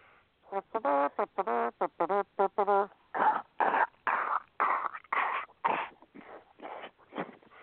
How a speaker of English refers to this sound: And now it's time for the Belch of the Week